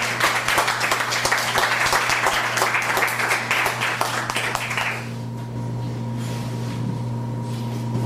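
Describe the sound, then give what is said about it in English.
An audience applauds a performer with dense, steady clapping for about five seconds, then the applause stops abruptly, leaving only a low, constant hum. “That was Joshua Schiff. Let's give him another hand.”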